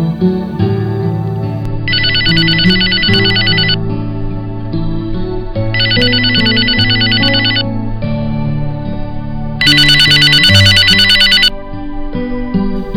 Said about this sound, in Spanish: Y eso fue hasta que una llamada por teléfono lo despertó, y vaya que lo hizo así.